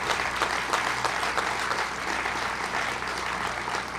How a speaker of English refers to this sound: First to Mr. Tony Nicely, who has shown such phenomenal business acumen, such leadership, in being part of the GEICO leadership team. Let's give him a big round of applause for what he has accomplished.